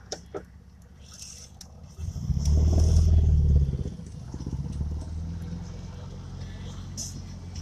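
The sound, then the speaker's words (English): A quiet vehicle engine idles with a low, steady rumble that swells louder for a couple of seconds midway, then settles back into a soft hum, with faint clicks and rattles around it. “It's like, it doesn't even sound like my engine's on for a second.”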